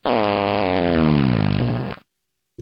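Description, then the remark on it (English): A single loud, drawn-out fart sound effect, buzzy and sputtering with a pitch that sinks over about two seconds before cutting off abruptly into silence. “Here's just fart.”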